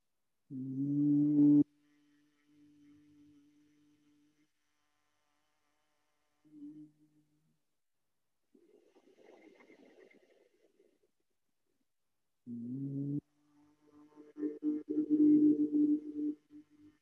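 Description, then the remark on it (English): A steady, low hummed tone held by a voice for a couple of seconds after a deep breath in, then fading; the hum returns later, louder and richer, sustained alone with no talking, as part of a Brahmari humming breathing practice. “And then breathe in and begin humming.”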